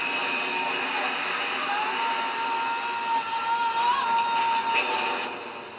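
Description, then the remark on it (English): A steady, loud mechanical roar like airplane engine noise, a dense whooshing drone with a faint whining tone running through it, holding evenly for several seconds before easing slightly at the end. “Can't do planes, man.”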